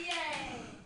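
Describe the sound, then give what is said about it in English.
A short burst of audience applause on a show, clapping in answer to a call for applause if their parents don't approve of them and their lifestyle: dense overlapping clapping mixed with a few cheering voices, holding steady and then easing off slightly within a second. “Round of applause if your parents don't approve of you and your lifestyle.”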